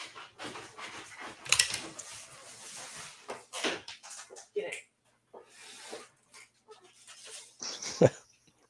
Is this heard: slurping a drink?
no